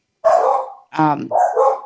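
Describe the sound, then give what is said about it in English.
A dog barks three times in quick succession, loud, the middle bark rougher and more growly, with no one talking over it. “The dog agrees.”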